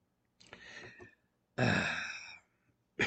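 A person coughs and clears their throat: a rough, breathy burst, then a louder, harsher hack, with another starting just as it cuts off. No talking. An intended throat-clearing cough that turned into a real cough.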